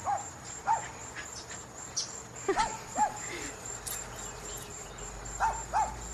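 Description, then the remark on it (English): A dog running in a backyard gives short, sharp barks in scattered pairs, a few at a time, over a steady high insect-like whine and faint outdoor background noise. “And I love this because he's just running in this clip and you'll hear him bark.”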